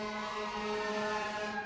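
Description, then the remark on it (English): Emergency sirens wail steadily, a sustained, even tone with rich harmonics that holds its pitch throughout the short stretch, with no voices present. “I can't be doing a podcast with sirens going off.”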